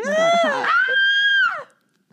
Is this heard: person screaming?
yes